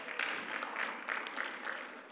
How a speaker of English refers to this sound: That was a good one. All the men should be clapping there, but that's all right.